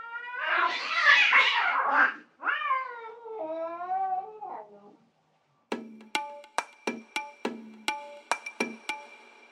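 A cat yowls harshly, then gives two long, wavering meows. After a short pause, a quick run of bright, plucked musical notes follows.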